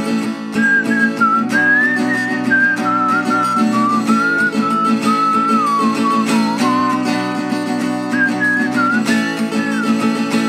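A bright whistled melody glides up and down in a steady, continuous line over a full, sustained musical accompaniment, staying loud and even throughout.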